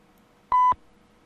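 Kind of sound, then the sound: signal or alarm, voicemail beep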